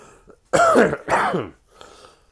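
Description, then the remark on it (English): Two loud, rasping throat-clearing bursts in quick succession, the first longer and the second slightly shorter, each with a rough, voiced growl, followed by quiet low-level noise. “Excuse me for a frog in my throat.”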